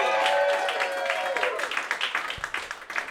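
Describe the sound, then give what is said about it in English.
An audience breaks into applause for actress Laura Vandervoort, a dense wash of clapping with scattered whoops and cheers at first, thinning into quicker, separate claps as it fades over a few seconds. “Give it up for Laura Vandervoort, everyone.”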